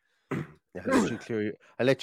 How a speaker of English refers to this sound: I'll let you clear your throat there while I try and wrestle with the sound on my headset.